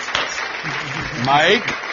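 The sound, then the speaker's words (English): Steady audience applause fills the whole two seconds, a dense, hissy wash of many hands clapping, with a brief voice or cheer rising over it near the end. “I'll wait till the clapping's done.”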